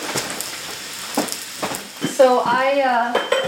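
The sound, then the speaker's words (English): Rice cakes crisp and start to brown in a pan with a steady, bright sizzle, puffing up along the edges, while a utensil scrapes across them in several short, rough strokes. A voice briefly speaks over the frying near the end. “And you can hear it sounds like drier and they're kind of like... scraping.”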